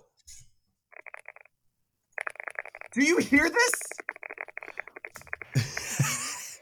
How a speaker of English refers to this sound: Yes, it does sound very smooth. It sounds very buttery. I can't hear you because we can only hear the mechanical keyboard.